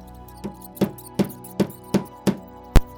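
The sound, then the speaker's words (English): Rats squeak and gnaw at the wood of a window in a series of sharp, evenly spaced scratchy bursts, about seven in a row, the final one loudest, over a low steady hum. “Now, they were still going crazy, and assured of the success of this maneuver, were all nibbling away at the wood.”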